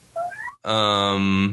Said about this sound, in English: Yeah. I was wondering if you could hear him or not. He is meowing in indignation about something.